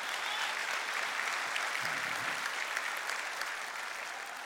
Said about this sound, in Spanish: Un aplauso al Señor, bendito Cristo.